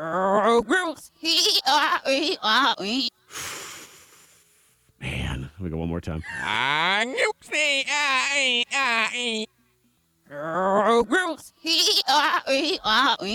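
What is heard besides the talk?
goats bleating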